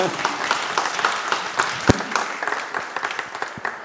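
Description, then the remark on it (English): A crowd applauds steadily for a few seconds, a dense patter of overlapping claps with one sharper, louder clap standing out partway through, then the clapping thins slightly toward the end. “Can we give them a round of applause now?”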